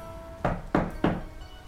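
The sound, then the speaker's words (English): Three solid knocks on a wooden door, evenly spaced, each a dull thud with a short ring-out, with nothing else in the background. “I knock on the door.”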